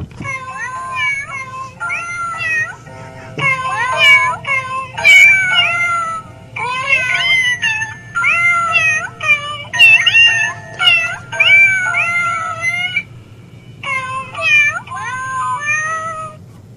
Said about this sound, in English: I have very talented and psychic cats, and the group, …, they sing, and they're here today, and they're going to sing a special happy birthday